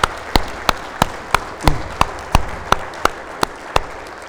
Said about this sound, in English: Can we give a round of applause for you? Thank you.